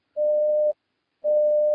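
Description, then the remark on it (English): Aboard the Starhawk spaceship, after the door closes, an incoming message alert sounds as two steady, mid-pitched electronic beeps, each about half a second long, separated by a short pause. The tone is loud and even, with no voices. “And once you guys get in, door closes, and you hear a message coming in.”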